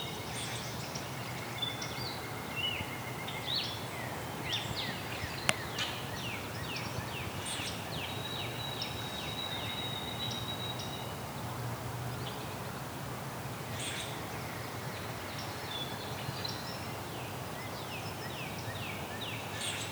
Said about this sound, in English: There's a rusty blackbird in the background, too. And a common crackle. Crackle's closer, though.